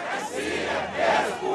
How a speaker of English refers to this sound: The largest crowds in two decades have come out to protest what they're calling corruption by the government. Tens of thousands pack the streets of Moscow in the biggest anti-government demonstrations Russia has seen for 20 years.